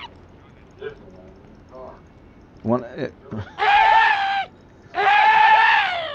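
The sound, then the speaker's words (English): A video game weapon lets out two loud, shrill, wavering screams as it fires, each lasting about a second, after a few softer clacks and short mechanical sounds. “When I shoot, it screams.”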